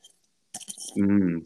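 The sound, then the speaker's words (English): A brief burst of wet slurping and clicking as someone sips a drink from an 8750 tumbler, followed immediately by a satisfied vocal 'ahh' that rings out for a moment. “You know what I need? I need a sip out of my 8750 tumbler.”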